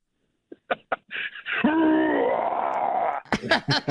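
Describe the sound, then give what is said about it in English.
A person imitates a grizzly bear roar in honor of Montana: a few short breathy grunts build into one long, loud, growling vocal roar of about two seconds, then a few brief vocal bursts follow. “you can make it up to us by giving us a great grizzly bear roar here in honor of Montana.”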